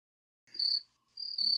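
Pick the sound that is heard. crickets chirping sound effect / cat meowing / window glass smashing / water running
crickets chirping sound effect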